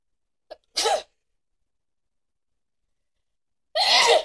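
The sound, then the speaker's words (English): Two sharp, loud sneezes, the first preceded by a quick intake of breath, then a long silent pause before the second bursts out. “So, hold on, I gotta sneeze.”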